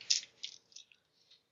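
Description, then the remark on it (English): A pool of 13 dice is rolled for initiative in a tabletop role-playing game, rattling and clattering in a quick burst, followed by a few scattered, fading clicks as they settle. The sound is bright and fairly soft, with no voices. “So, reroll my dice, add 3 dice.”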